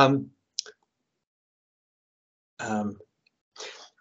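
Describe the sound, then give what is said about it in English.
Scissors click and snip, a sharp click followed later by a short rasping cut, between brief wordless vocal murmurs. “And so, hang on, I've got to pause for a moment here. Get the scissors out here, guys.”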